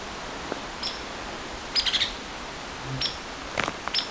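Hairy woodpecker calling: a series of sharp, high-pitched peek notes, some clustered in quick bursts, spaced irregularly over a soft background hiss with no talking.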